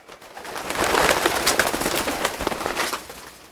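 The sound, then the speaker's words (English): A cluster of pigeons coos and stirs, their murmuring calls mixed with busy fluttering, swelling quickly and holding steady for a few seconds before easing off, with no voices. “Pigeons, activate electropeckers.”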